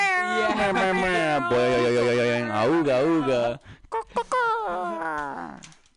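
dog whimpering and vocalizing

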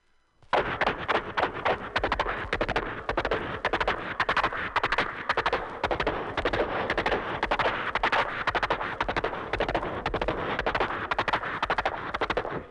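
horse hooves

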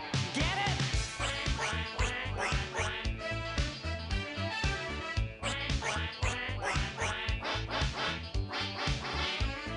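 duck quacking

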